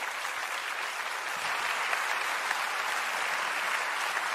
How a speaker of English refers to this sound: Can you please give Brittany and Dustin a round of applause?